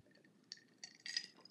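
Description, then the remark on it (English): Ice cubes clink and tinkle against a glass mason jar of ice water in a few bright, ringing bursts while someone takes a quiet sip, with no talking. “I have my little mason jar with ice water. I'm gonna take a sip.”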